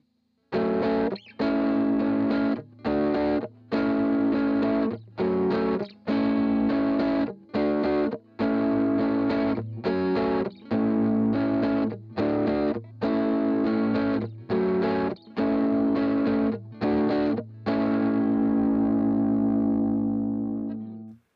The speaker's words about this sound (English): it actually functions as a clean op-amp boost rather than a traditional Tube Screamer